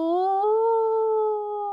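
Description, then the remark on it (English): A person imitates a wolf howling up to the heavens with one long, fairly loud tone that rises slightly at the start, then holds steady and fades near the end, with no other sounds. “And with that, he threw back his head and howled up to the heavens.”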